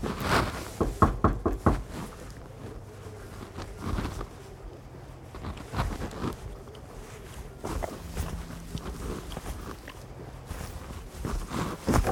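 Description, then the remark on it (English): A series of firm knocks on the basement door of a home, coming in uneven clusters of raps with short pauses between them, set against a low, steady background rumble. No one speaks. “No answer. But I soon realized that I was actually at the door of the basement.”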